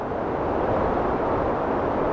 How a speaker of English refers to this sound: That wind you're hearing whipped across the summit of Mount Washington, which is the highest peak in the northeastern U.S., at 120 miles per hour. Wind chill temperatures were measured at below minus 100 degrees Fahrenheit.